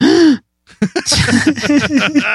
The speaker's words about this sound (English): Just that was an honest to goodness gasp.